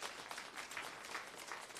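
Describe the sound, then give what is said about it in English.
A crowd breaks into steady applause, many hands clapping at once in a dense, even wash of sound that holds at a constant level throughout. The audience claps in recognition of the contributions Hispanics have made to the country. “Thank God for that. You can clap.”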